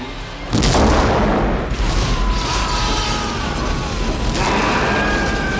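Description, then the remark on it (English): A sudden, loud explosion blows up a room after a brief quiet moment, then a heavy, sustained roar and rumble of debris carries on for several seconds without letting up. “Grant gets out just as it blows up the room.”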